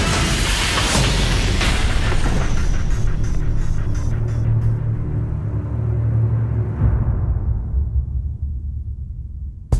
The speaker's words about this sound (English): Damn backup generator shorted because of all this rain. You gotta get the power on. We got transformers popping everywhere. The county is dark.